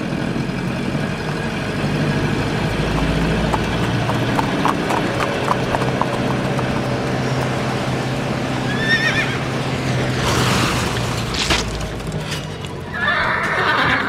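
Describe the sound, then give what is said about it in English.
Steady clip-clop of a horse's hooves over a low street rumble, with a short neigh partway through and another whinny near the end. “he witnessed a terrible accident between a horse-drawn buggy and a motorized vehicle.”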